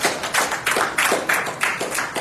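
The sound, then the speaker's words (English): A church audience claps together to give God a hand, in a steady, even rhythm, roughly three beats per second, the many hands blending into a dense, fairly loud pulse with no voices over it. “Put your hands together, give God a hand and clap again.”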